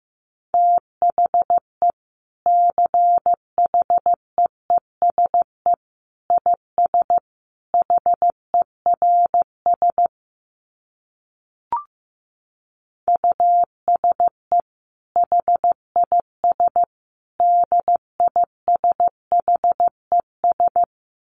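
Morse code sent at 15 words per minute: a steady mid-pitched tone keyed into short dits and longer dahs, broken by a pause partway through with a single click.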